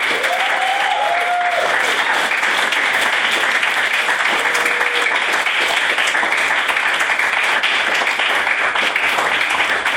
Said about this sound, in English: We could get a second round of applause